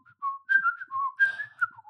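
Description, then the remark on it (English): Someone whistles a quick, wavering melody, the pitch sliding up and down in short bursts, mimicking the swooping flight of an arrow. “He's basically held up in a field and these people are going surrounded and his little arrow just goes.”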